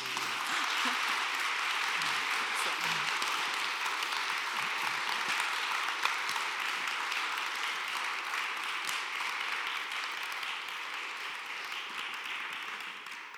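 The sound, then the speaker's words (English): A crowd applauds steadily for over ten seconds after a religious talk, a dense wash of many hands clapping at a sustained, even loudness before easing slightly at the end. “Now you can really applaud.”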